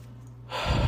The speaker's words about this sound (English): I feel like I gotta blow my nose.